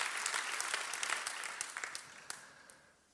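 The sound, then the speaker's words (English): An audience applauds its leaders after hearing that 43 families pledged 642,000 rand, a steady round of dense overlapping hand claps with a few sharper individual claps standing out, gradually fading toward the end. “Come on, give your leaders a big round of applause.”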